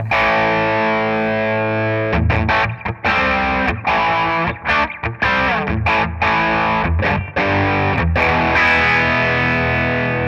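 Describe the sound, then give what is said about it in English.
A loud electric guitar through a distortion pedal plays a held crunchy chord, then a choppy rhythmic riff with sharp stops and restarts, with no voices over it. “as soon as I play this guitar with distortion, it sounds like …”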